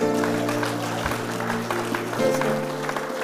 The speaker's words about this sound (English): Give the Lord a clap.